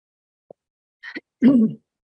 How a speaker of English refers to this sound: I'm gonna mute myself so I can clear my throat without hurting anyone's ears. Well, maybe. There we go. Sorry, got a frog in my throat. That was terrible for everyone. I apologize.